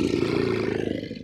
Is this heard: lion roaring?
yes